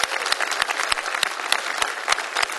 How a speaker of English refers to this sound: Why don't we here in Green Bay give a warm welcome of applause to those that are joining with us online at the other campuses as well. Let's welcome them.